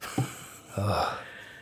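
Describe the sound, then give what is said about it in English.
Heavy breathing into the microphone: a short, sharp intake followed by a longer, gusty exhale, with a faint voiced edge but no words. “My contribution this week is just breathing.”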